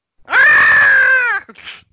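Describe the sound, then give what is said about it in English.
A person imitates the 'Vulky scream' with a loud, sustained scream lasting about a second, held at a steady high pitch with a strained, harmonic tone, then breaks off into a short breathy exhale. “You do the Vulky scream.”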